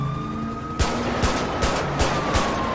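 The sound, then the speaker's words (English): Sharp video game gunshots crack out in several spaced bursts, roughly five shots at uneven intervals, fired at a suspect's car engine during a police pursuit, over a steady siren-like tone and background hum, with no talking. “Shots fired on suspect vehicle.”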